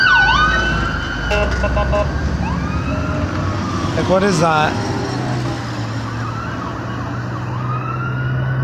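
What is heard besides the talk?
emergency vehicle sirens passing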